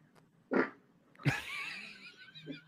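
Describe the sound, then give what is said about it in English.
A loud fart from a woman: a short puff, then a longer buzzing, raspy blast that trails off over about a second, followed by a faint brief sound. “She farted before he even poked her butt.”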